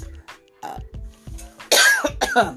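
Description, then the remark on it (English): A loud coughing fit: several short throaty coughs and throat-clearing sounds, building to a couple of harsh, forceful coughs near the end, with no talking. “I know you don't want to listen to somebody cough.”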